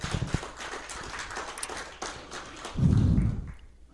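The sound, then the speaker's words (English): An audience claps together as a hand clap of praise to the Lord, a dense patter of many hands that runs steadily for several seconds and swells louder toward the end, with no one speaking over it. “If you believe that, give the Lord a hand clap of praise real quick.”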